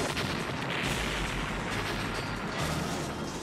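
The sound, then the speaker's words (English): Bombs set off by a bomber roar through a loud, sustained wash of crackling noise and deep rumbling, with heavy booms rolling over one another and no voices. “Guy out there setting off bombs.”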